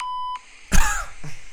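A timer alarm gives one steady, high electronic beep lasting about a third of a second, followed by a louder burst of clattering noise and a fainter thud.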